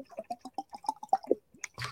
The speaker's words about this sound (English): And today, water, because hydration is important. Also, I've been drinking too much water as well.